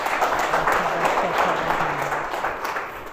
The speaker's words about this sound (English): Let us give a clap offering to God.